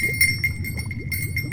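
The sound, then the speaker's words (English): A bell harp chimes as a ritual begins, in quick, steady repeated strikes, each a bright, high metallic ping with shimmering overtones, ringing over a low murmuring rumble underneath. “Bell harp. Okay. Yeah. Ready.”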